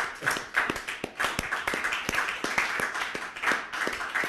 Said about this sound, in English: Clap it up for ….